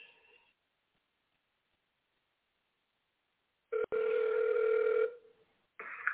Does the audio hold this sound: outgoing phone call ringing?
yes